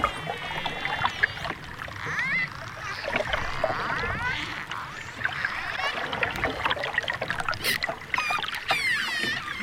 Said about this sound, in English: Okay, it's either a dolphin, a shark, a seal, or a killer whale. Could be any one of those. Which one is it? It was a dolphin.